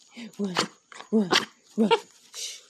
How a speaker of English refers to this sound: Don't do that high pitch bark.